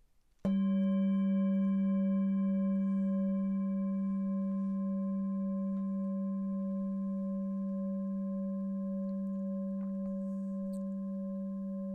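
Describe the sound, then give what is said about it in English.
A meditation bell is struck once, ringing with a steady low tone and bright overtones, then sustaining and slowly fading over several seconds with no voices. “It's neutral, just like the sound of the bell moving through time.”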